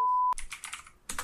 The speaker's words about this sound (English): I can't type because you guys are going to bitch about my keyboard